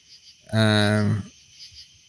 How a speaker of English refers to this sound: You've got some wildlife there in the background. I can hear crickets. There used to be cicadas. I mean, I am in the country. We are in Long Island. We are in the Hamptons, so to speak.